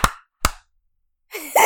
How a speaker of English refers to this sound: Okay. Ready to clap in 3, 2, 1.